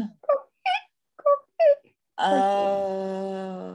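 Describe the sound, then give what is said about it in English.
A voice mimics a coqui frog call, giving two quick rising two-note chirps in a row, then slides into a long, steady, wailing sung tone that holds to the end. “And the sound of it, it was like the Koki, a Koki frog, like, you know.”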